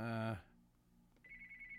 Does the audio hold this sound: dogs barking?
no